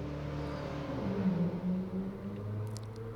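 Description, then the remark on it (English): A turbocharged drag racing car launches off the line on a drag strip and accelerates hard on a quarter-mile qualifying pass, running 11.73 at 125 miles an hour, its loud engine roaring with rising pitch, the steady powerful drone filling the whole moment with no one speaking. “He ran it hard. He hooked up good right off the line.”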